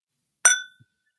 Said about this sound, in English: The sound effect of my glasses clinking.